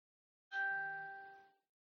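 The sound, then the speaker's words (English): A single Facebook notification chime: one bright, clear electronic ding that rings out and fades over about a second, heard alone with no talking. “What's that? A Facebook notification.”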